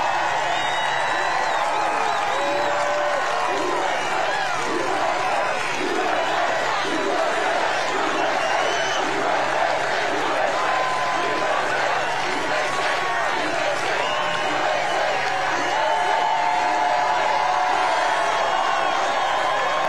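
A large rally crowd cheers and roars continuously after the speaker vows to take back the White House in 2024, a dense, loud wash of shouting voices with whoops rising above it, steady throughout with no pauses.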